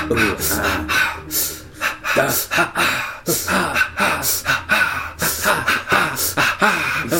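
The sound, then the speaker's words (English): Rhythmic breathing with gasps and wet mouth noises from a film soundtrack, repeating in quick, steady bursts for several seconds, with no words spoken. “This is pretty much throughout the entire movie. This and just a lot of, like, breathing.”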